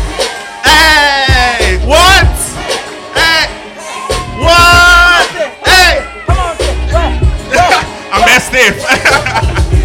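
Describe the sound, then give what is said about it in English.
A crowd claps and cheers loudly as nominees are introduced, with rising whoops and excited shouts overlapping in repeated bursts for about ten seconds, while voices call out through the din. “Let's go, let's clap.”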